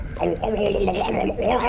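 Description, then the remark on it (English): Someone gargles liquid squirted into their mouth from a needle, a steady, wavering, bubbling vocal tone that holds loudly for nearly two seconds without a break. “see how far from across the room you can shoot it into my mouth”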